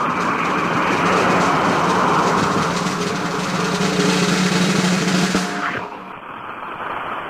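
A loud, sustained drum roll sound effect played on a radio show: a dense, rapid rattle holding steady for about five seconds, then ending with a sharp stop and a quieter, duller tail. No one speaks.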